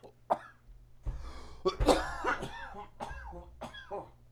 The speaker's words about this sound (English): Call the hospital. Better get that under control. Your butthole's going to fall off. You cough too hard.